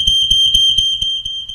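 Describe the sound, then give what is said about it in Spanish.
A high-pitched electronic alarm beeps insistently, its shrill tone pulsing over and over in a fast, steady rhythm, loud, with no voices. “¿Usted ha escuchado las alarmas? ¿Suenan una vez? ¿O cómo suenan las alarmas?”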